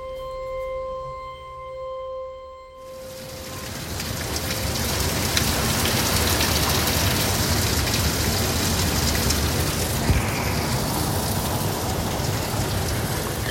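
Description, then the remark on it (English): Low steady humming tones give way after a few seconds to a loud, dense roar of heavy rain pouring outside at 11:38 that hisses on unbroken to the end, with no one speaking. “It is pouring out.”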